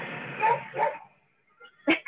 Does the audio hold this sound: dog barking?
yes